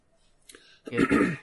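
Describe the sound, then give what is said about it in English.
A single rough throat clearing: a short catch, then a louder, rasping, guttural push lasting about half a second, with no talking around it. “sorry, let me clear my throat before I talk some more.”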